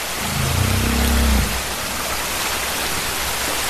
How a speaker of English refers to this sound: Could you play for me common humpback whale vocalizations plus windy day noise?